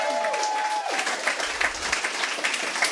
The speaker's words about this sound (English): Because we're here at Nerdist Industries at Meltdown Comics, right? How about a round of applause for those guys?